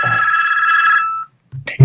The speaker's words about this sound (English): Sorry. Pause. Damn. Did I hear someone's phone? Not going to stop ringing. Go on. Just... No, it's my. Oh, yeah, that was my stupid goddamn phone.